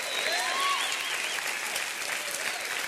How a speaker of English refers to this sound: Come on now, clap your hands for that.